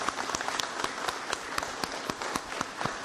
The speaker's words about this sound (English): So thank you for that, Executive Parisi. Any requests that we have for him to shave seconds off at any point in our process, he's willing to step forward and lead that charge. So thank you. Let's give him a round of applause, too.